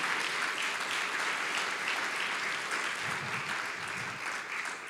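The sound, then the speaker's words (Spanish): An audience applauds the Lord at a pastor's call during a sermon, a steady, dense wash of many clapping hands that holds fairly loud across the whole stretch, with faint low voices surfacing briefly near the end. “Dale una fuerte aplauso al Señor.”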